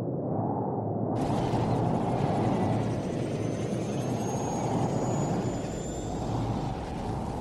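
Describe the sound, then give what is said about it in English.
A helicopter flies with a loud, steady rotor roar and heavy low-end rumble, joined after a second by a rushing, hissing wash of wind that stays throughout, as a sudden strong gust pushes the helicopter towards a forest. “There is a sudden strong gust of wind that pushes the helicopter towards a forest.”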